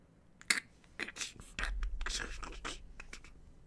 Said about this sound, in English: A crack, the sudden rattling of a loosened stone.